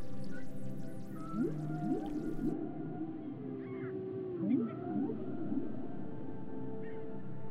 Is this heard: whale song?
yes